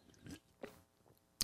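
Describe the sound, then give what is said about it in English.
A quiet sip from a drink: a short slurp and a couple of soft wet mouth sounds, ending with a sharp little click. No one speaks. “Take a sip here.”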